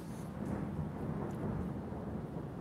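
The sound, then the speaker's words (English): A deep, sustained rumble of thunder from a summer storm rolls steadily through the whole moment, heavy in the low end with a faint hiss of rain above it, and no voices. “Ooh, we're in for a big one. Man, nothing like a summer storm.”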